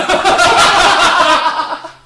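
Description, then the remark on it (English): A single loud, breathy sneeze bursts out and trails off over about two seconds, with no talking around it. “Bless you.”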